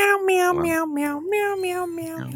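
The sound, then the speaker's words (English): A cat meows in a Meow Mix cat-food jingle, a quick string of about seven tuneful, sustained meows that rise and fall like a sung melody, clear with no talking. “They call for it by name, man.”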